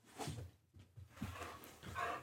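A dog barks a few times in short, irregular bursts, muffled, with quiet background noise between the barks and no one talking.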